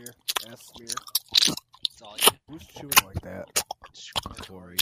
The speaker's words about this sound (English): Who's chewing like that? It's ASMR. That's fucking dreadful.